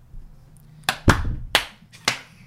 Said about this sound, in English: go 1, 2, 3, close your eyes, and we're going to guess when everyone claps.